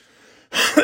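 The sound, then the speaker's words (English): A short, raspy throat clearing, from something stuck in the throat since having COVID, bursts out loudly after a brief moment of quiet, ending with a low guttural rumble. “And I know that for the last, like, you've been listening to her 3 years of me always having to clear my throat.”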